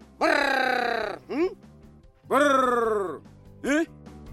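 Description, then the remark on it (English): A man's loud trilling call rings out twice, each a long rolling brrr followed by a short grunted note, used by Yao honey hunters in Mozambique to summon greater honeyguide birds, with no other talk. “The honey hunters make special calls to attract the appropriately named Greater Honey Guide bird.”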